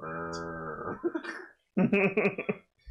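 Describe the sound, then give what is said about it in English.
A person imitates a cow with a long, droning vocal moo, then follows after a brief pause with a second, rougher burst of voiced mooing noise, both loud. “Has anyone made a cow progress key? Because I want, like, necking cow. I think you know what the sound would just be.”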